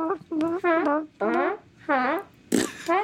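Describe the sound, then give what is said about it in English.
A voice imitates farts with a series of about five buzzy, wobbling blurts in a quick, steady rhythm, fairly loud, the last one ending in a breathy burst. “Instead of a dead silence, what if there's one you can fart on every step that you take?”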